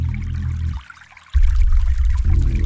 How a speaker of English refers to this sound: Streams just don't appear, and then the stream is now flowing in the road. The stream is now flowing to the right of the road, closer to the portal.